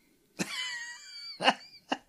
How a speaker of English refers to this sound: And then he coughed on his words, and I was like, negotiators?